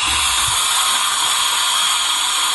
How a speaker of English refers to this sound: For the skills portion of the competition, I will steam 7 judicial robes in under 2 minutes.